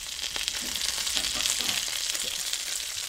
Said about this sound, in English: So the sound of the sizzle is completely different. Like the quality is because now it's just fat. There's no water left. Yeah. And that's just oil.